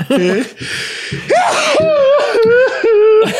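A loud sneeze bursts out near the start, followed by a few seconds of voiced, strained vocal sounds like laughter or recovering breaths.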